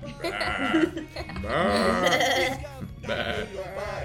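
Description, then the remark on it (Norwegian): Sheep bleating, three wavering, quavering calls in a row, the middle one longest, loud and clear with no talking over them. “Eller kanskje en sau. Ja, sau er fint.”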